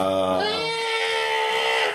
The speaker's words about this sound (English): and you see here that's the emergency light. Uh-huh. It starts glowing red and like sending out like the little skull starts screaming.